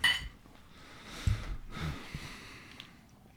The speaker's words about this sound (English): Yo, cheers, buddy. Hey, cheers, let's reach in. Let's do it. Another clink. Clink.